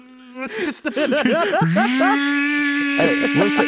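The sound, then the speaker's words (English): A voice imitates a shop vac, making a buzzy, droning hum that warbles rapidly up and down before settling into a steady, loud whirring tone with breathy hiss. “I'm just picturing like a shop vac sound.”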